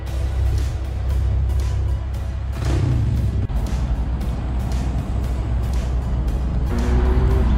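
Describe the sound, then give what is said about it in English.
Steady, loud roar of heavy traffic on a five-lane road at about 8 o'clock in the morning, with cars and trucks swishing through one after another over a constant low engine rumble and a brief hiss of air brakes. “You can see that there's still five lanes of vehicle traffic. It's moving just as well as it normally does at this time of day.”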